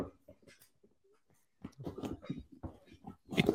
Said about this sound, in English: This is your puppy.